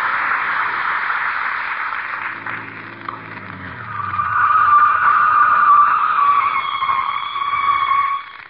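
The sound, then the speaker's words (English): A car's brakes screech loudly for several seconds, a shrill, sustained squeal over rushing road noise and a winding-down engine, as the vehicle skids to a stop on arriving at the fairgrounds. “Brakes fixed. Well, here's the fairgrounds, Molly.”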